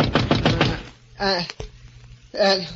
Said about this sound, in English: Then I fell into a deep sleep. And then a knock on the door wakened me.